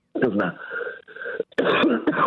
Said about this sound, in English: I'm going to cough, hang on.